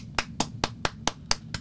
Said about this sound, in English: That is one of the LGBTQIA plus folks applauding and or doing something in the corner.